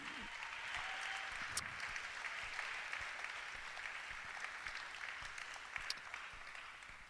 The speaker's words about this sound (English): Let's just give them one more round of applause.